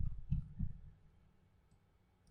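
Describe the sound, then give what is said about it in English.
A few soft, muffled keyboard key clicks land close together near the start as Bobo sits on the keyboard, followed by near silence broken only by a couple of faint, tiny ticks. “You're sitting on the keyboard. Take it off.”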